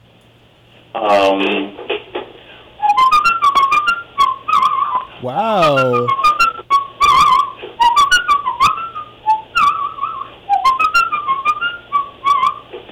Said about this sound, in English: Yes, you even have a little vibrato on that whistle.